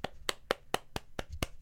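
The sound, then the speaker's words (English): Hands clap in a quick, steady rhythm, about seven sharp claps in under two seconds, fairly loud, as if keeping time to a song. “Everybody clap your hand.”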